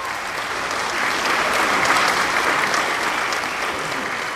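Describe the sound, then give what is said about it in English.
Sustained applause from a large crowd at an award ceremony as a singer who has just received an award walks off stage, especially from the Brit School crew; a dense wash of clapping at steady volume that swells slightly in the middle and continues without pause, with no voices standing out. “Finally, it's all over, and she's walking off stage to warm applause, especially from the Brit School crew.”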